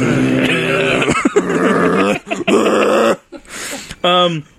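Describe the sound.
A man growls low and gruffly in his throat, imitating Wesley Snipes with a snarl in several rough bursts with brief pauses, fairly loud, ending on a strained voiced note.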